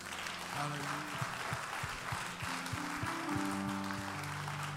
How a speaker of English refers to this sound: Can we give all our guests a hand clap?